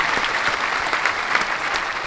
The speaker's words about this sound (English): Round of applause to y'all, man, and hopefully one day y'all get back to making some goddamn content, because you're funny.